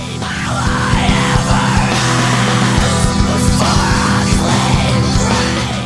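A loud, dense rock track with a high-pitched vocal straining into shrieks above heavy, driving instruments, the intensity holding steady for several seconds without a break.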